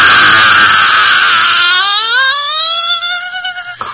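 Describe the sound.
A loud, shrill scream by wrestler Big E during his "don't be sour" line, harsh and raspy at first, then narrowing into a piercing, sustained wail whose pitch climbs slightly before it cuts off abruptly.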